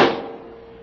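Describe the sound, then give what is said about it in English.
A single heavy metallic clunk as a door opens, followed by a steady ringing hum that slowly fades. No voices are present. “It's opening.”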